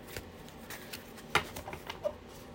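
A deck of positive affirmation cards being shuffled to end a card reading, with quick papery riffles and soft slaps, including one sharper snap partway through, and no one speaking.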